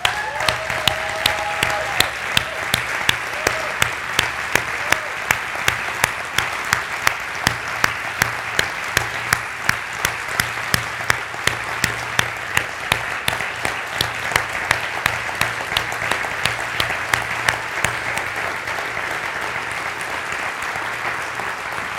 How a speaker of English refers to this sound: And so I think it would be appropriate if we just applaud their work, their families, and show them how much we appreciate them. Is that okay?